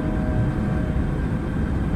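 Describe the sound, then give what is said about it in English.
A steady aircraft engine hum drones on without a break, a loud, low rumble with a faint whine layered on top, like a plane cruising in flight. No one speaks. “Commencing drone mode.”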